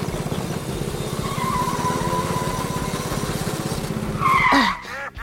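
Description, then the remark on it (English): The small motor of a toy bathtub car putters and rumbles steadily during a race, then revs up with a sharp rising whine and screech as the car zooms away, fairly loud with no talking. “Well, I've never driven a bathtub car before. Hang on!”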